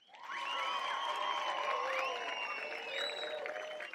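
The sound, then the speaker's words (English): A new canned applause sound effect for a show: a crowd claps steadily and loudly for about four seconds, with high whoops and whistles rising and falling over the clapping. “Those of you who have been tuning into the show for a while, for a while, know that I have loathed the sound effect I had for applause. Well, look at listen, I got something new.”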